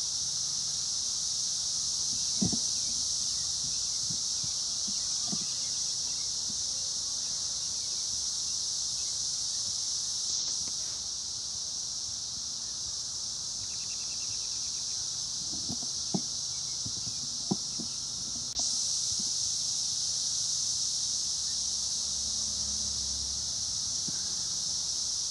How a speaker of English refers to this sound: The cicadas coming up like voices of the dead.